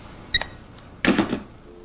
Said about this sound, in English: I'm hanging up now.